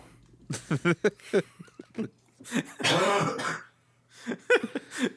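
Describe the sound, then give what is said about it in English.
A voice performs a series of harsh, wet coughs and throat-clearing grunts, ending in a long, breathy, spluttering hack full of spittle. “I mix a cough with a little bit of aspirated spittle.”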